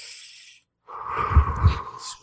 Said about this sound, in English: You started breathing through your mouth? Controlled breathing.